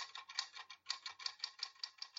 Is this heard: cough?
no